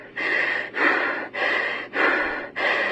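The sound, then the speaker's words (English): A woman breathes heavily and rhythmically into a face mask, muffled, five long breaths in and out at a steady pace, with brief pauses between them and no talking. “So she's putting on a face mask and breathing into it.”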